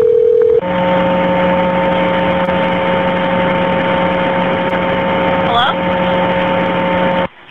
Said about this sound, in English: Nothing but static. It's a 911 call. Very frequently done. Hang up calls. This one's a little different, though.